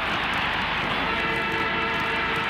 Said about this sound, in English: There's the siren. Melbourne wins 8-16-64 to Collingwood's 8-12-60.